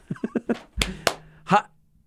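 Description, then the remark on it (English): Two sharp hand claps ring out close together, loud and crisp, in between bits of someone talking. The claps are used to test a voice-activated device, as with a clapper. “Remember that clap on the clapper.”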